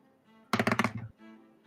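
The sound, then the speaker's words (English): Dice rolled for a dexterity (sleight of hand) check, totalling 19 plus 3, clatter across a table in a quick burst of about five sharp, rattling knocks lasting around half a second, with faint voices murmuring before and after. “Where'd my big dice go?”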